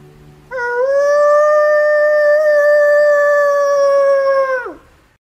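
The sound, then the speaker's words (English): A person imitates a wolf howl: one long, steady, loud tone held for about four seconds, then dropping off sharply at the end. No other voices. “But here's something I might do when I'm out there as far as a howl.”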